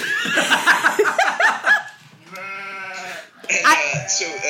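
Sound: goats bleating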